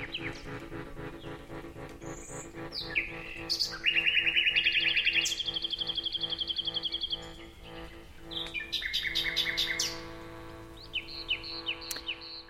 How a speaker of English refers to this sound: David Sillitoe and the Nightingales, singest of summer in full-throated ease. How wonderful.